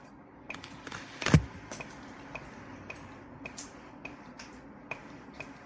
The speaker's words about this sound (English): Oh, that's a metronome. That's my keyboard. I'm F10ing aggressively. What does F10 do? It steps over.